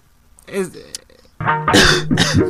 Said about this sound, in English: Dude, stop fucking coughing.